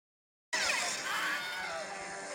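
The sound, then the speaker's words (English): After half a second of silence, a loud, strained scream bursts in and holds for nearly two seconds, its harmonics wavering and sliding downward: the Wilhelm Scream, a stock scream sound effect heard in movies going back to the 1950s. “And it is called the Wilhelm Scream, right? Yeah. So it's a total stock scream.”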